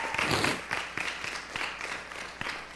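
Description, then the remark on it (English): A crowd of people who go to Saturday night prayer claps steadily, a dense, crackling patter of many hands with a few sharper individual claps standing out, holding at a moderate level throughout with no one speaking. “If you go to Saturday night prayer, can you just clap?”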